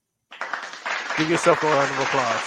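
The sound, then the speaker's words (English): A steady applause sound effect starts abruptly after a brief silence and keeps going as a dense wash of clapping, with a voice talking over it for the second half. “Give yourself a round of applause for being a part of the show, fans.”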